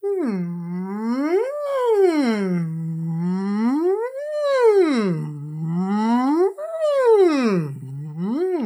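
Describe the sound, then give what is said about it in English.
A single voice does a siren singing warm-up exercise, gliding smoothly up and down in pitch over and over, with rich harmonics and steady loudness. Each slow rise and fall lasts about two to three seconds. “Some sirens. The voice warm-up for singing stuff is very useful for this.”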